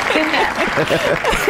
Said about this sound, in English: The crowd goes wild.